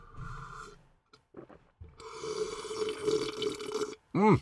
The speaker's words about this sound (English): No, I gotta take a fresh sip of this water. Refresh that palate.